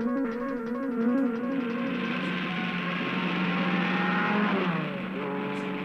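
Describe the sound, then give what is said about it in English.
The engine of the Mach 5 race car roars loudly and steadily, its pitch climbing and shifting as it revs and speeds along, then dropping near the end. “You are watching the most advanced designed and one of the fastest racing cars in the world.”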